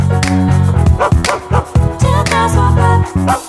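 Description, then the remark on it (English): A dog barks repeatedly in quick, loud bursts, with short yipping notes mixed in over a steady sustained tonal backing. “I'm here today actually with three dogs.”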